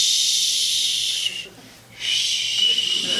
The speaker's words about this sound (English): Bob turns up the white noise machine.